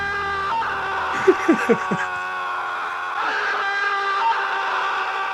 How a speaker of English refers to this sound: Just so much shouting.